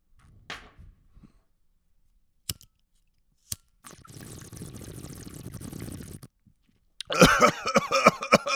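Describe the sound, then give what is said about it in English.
A voice imitates bong water bubbling: a couple of clicks, then about two seconds of steady, low gurgling, followed by a louder, harsher burst of bubbling sputter. “That's what a bong sounds like.”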